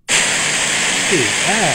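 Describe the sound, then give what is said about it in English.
A loud, steady wash of pink noise, a broad hissing rush that starts abruptly and holds constant, with faint voice-like warbling tones surfacing beneath it near the end. “All right, here's purple, or pink, I'm sorry.”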